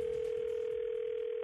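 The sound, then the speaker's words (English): A steady, unbroken telephone ringing tone at the start of a phone call hums at moderate loudness for over a second, then cuts off abruptly, with faint line noise underneath and no voices. “Let's listen into today's phone tap.”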